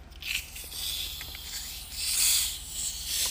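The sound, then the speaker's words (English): A Dr. Pepper soda can cracks open with a quick snap, then a steady, bright fizzing hiss runs on for a few seconds, swelling and fading slightly, with no voices. “Yeah, you know, just get ready to crack it open.”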